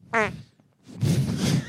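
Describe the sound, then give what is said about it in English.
A fart into a microphone, with a short, buzzy tonal blast first, then after a brief pause a longer, louder, rough sputtering rasp lasting nearly a second. “When you fart on mic, that's exactly how you want it to”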